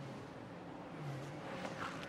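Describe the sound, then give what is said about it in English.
Several race car engines, GTD and LMP3 cars in heavy traffic heading up the hill from turn seven to turn eight, drone and whine together at steady volume, with a rising rev and a pass-by swelling near the end. “Heading up the hill from turn seven to turn eight there was a whole bunch of GTD cars, LMP3 cars, you name it, they were in there, and Colin was working his way around.”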